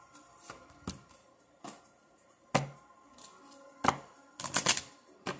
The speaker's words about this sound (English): Actually, I was going to get a healing card is what I was shuffling, but I'm going to get an angel card.